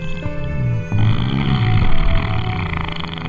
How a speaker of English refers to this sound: I've been trying to climb this Colossus for like a week now. I have no idea what he ate, but his farts knock me off every time. Plus, oh god, it's like he's got a herd of rotting cattle in there.